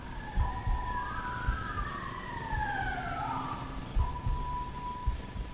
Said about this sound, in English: Is that a police sign or a home alarm?